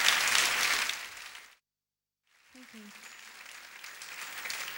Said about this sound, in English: I'd like to share your applause with the wonderful musicians that are here with me tonight.